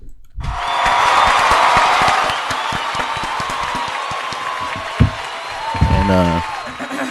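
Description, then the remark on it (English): A crowd bursts into dense, steady applause that begins abruptly and holds for several seconds, easing slightly, with a brief vocal shout rising over the clapping near the end. “Please clap.”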